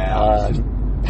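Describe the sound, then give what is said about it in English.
A short electronic lane departure warning tone sounds briefly inside a moving car, fading after a moment over the steady low rumble of the engine and road noise. “we're being told to get back in lane.”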